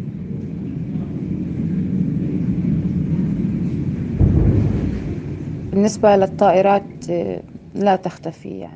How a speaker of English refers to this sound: I mean, since Sunday, the planes have not stopped flying over. I mean, from time to time, there are warplanes, naval boats, guns.